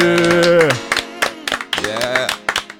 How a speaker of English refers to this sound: Clap it up, fellas.